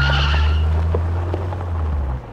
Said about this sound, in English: I just made it to my car before anyone could grab me. I peeled out of the parking lot and drove as far away as I could from that black Tahoe.